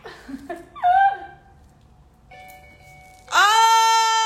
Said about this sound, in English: I'm gonna play Christmas music. Christmas music!